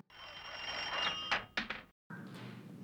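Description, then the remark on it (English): An old-fashioned telephone bell, like the ringtone of the very first phone, used by Alexander Graham Bell to call Mr. Watson, rings with a steady, bright metallic tone, then breaks off into a few sharp taps before a short pause and a duller, lower noise. “Normal ring with some taps at the end.”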